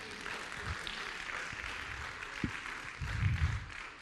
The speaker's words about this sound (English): Come on, don't give him a golf clap this morning. If you're going to clap, give him a good clap.